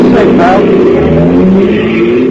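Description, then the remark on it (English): A taxi cab's engine roars loudly and steadily as the car accelerates away to catch up with another car, a continuous rumbling drone with muffled voices underneath. “Catch up with them. Don't let them get away.”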